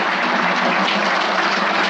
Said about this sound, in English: I'm not here to get your applause. I certainly appreciate it.